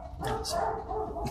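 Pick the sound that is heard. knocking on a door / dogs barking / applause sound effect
dogs barking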